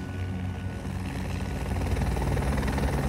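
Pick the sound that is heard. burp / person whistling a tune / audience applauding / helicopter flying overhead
helicopter flying overhead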